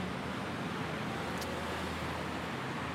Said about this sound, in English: And as you can hear, I'm now back in traffic.